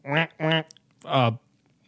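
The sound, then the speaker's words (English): A person's voice imitates a duck with three nasal, buzzy quacks, two quick ones and then a longer one after a short pause, clear against a quiet background. “Duck. Yes, duck.”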